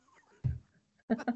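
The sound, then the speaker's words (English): A raspy, hoarse meow from Muffin, a cat: one low, gravelly call, then after a short pause two quick, harsh bursts, fairly loud over a quiet background. “She has the worst meow ever.”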